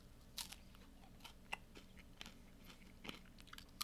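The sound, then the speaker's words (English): Crunching of an ice cream cone being bitten and chewed, a series of crisp, irregular crackles over a few seconds, fairly quiet, with no talking. “I'm gonna get at least a crunch the cone for you guys, and then we'll call it a night or a day.”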